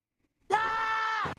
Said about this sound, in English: No, two screams. I like it.